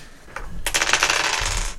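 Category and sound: dice being rolled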